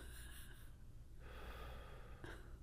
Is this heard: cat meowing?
no